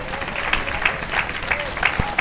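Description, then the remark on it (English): A crowd claps together in a steady, rhythmic beat as a hand clap of praise to the Lord, the sharp claps repeating roughly every third of a second with a murmur of voices underneath. “If you believe it, give the Lord a hand clap of praise.”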